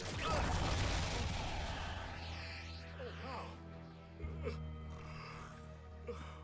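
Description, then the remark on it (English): A loud, drawn-out yawn opens with a breathy rush of air, then tapers into softer wavering vocal sounds and a few faint knocks in the background. “Well, that yawn was contagious.”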